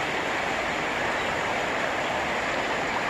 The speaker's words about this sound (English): And so I can be right here with the river. I can be right here in nature.